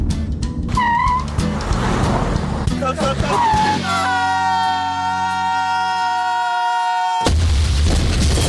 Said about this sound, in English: Took the shortcut, huh? Have a car wreck? Martin's Collision Repair.